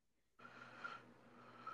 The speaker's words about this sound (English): You are breathing very hard